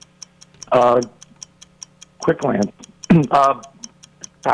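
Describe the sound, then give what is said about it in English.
A 60-second game countdown clock ticks steadily in a quick, even rhythm throughout, its sharp clicks continuing underneath bursts of people talking. “We've got 60 seconds on the clock, and your time begins now.”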